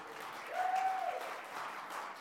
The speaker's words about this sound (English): Can we thank him? That was a lame applause. Come on.